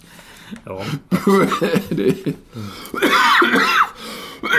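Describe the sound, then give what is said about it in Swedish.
A fairly loud coughing fit brought on by laughing at a joke: several harsh, irregular bursts over a few seconds, mixed with breathy, laugh-like vocal sounds and throat clearing. “Så roligt att jag börjar hosta.”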